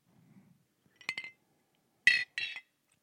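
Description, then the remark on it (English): Whiskey glasses clink together in a toast: a quick pair of light taps, then two louder, ringing clinks, with no voices. “As in also the custom, we are going to have a toast.”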